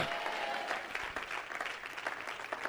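An audience claps in a dense, steady burst of applause that fills the whole stretch, with faint cheering voices mixed into the clatter, responding to a preacher's call to clap their hands and shout.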